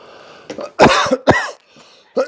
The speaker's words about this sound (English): One, because coughing is a side effect of this that is unfortunate. And I know that my lungs are not in terrific shape.